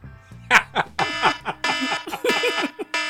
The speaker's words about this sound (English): I'm going to let the alarm go because you deserve it for that.